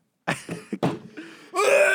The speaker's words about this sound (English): At least you're not sick, as you just coughed up a lung.